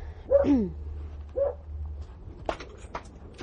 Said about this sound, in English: Some dogs barking. Oh, boy.